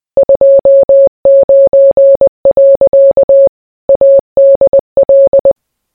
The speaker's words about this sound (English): Well, that was a bit weird. Might have to keep an eye out for what that Morse code means.